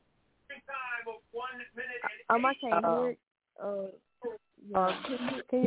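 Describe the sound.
A television plays in the background, its muffled, tinny voices coming in short bursts of indistinct talk with brief pauses between them, moderately loud.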